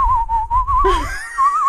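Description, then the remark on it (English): A person whistles a short Christmas song melody, holding a steady clear note before sliding into brighter, shifting tones, with low rumble underneath and no talking. “especially the … one. You know, when he starts whistling in the middle.”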